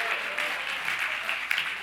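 A small audience claps steadily, a dense patter of hand claps with no clear rhythm, moderately loud and without any voices over it.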